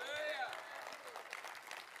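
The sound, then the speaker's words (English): An audience claps steadily, dense overlapping hand claps, with a raised voice calling out at the start over the applause. “I don't think, don't clap for me.”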